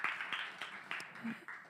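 A group clapping their hands together in a steady, even rhythm, about three claps per second, forming a bright, moderately loud patter that carries on without pause.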